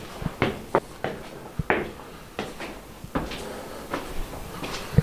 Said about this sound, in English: At the very summit stands a three-story stone watchtower built by the Civilian Conservation Corps in 1935. I enter through a heavy iron-banded wood door and climb the cut stone steps to the top.